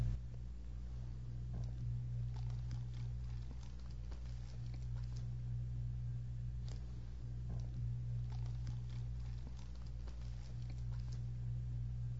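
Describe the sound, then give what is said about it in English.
Rain patters steadily outside during a thunderstorm with lightning, a soft continuous hiss broken by scattered sharper drips, over a constant low hum. “Although this rain is loved by the mosquitoes, who cheer when it rains.”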